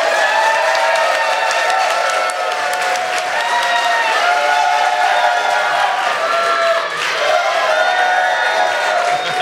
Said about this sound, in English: and I wanted to, like I have for the last time, three times we've done this here in Las Vegas, get a big, huge round of applause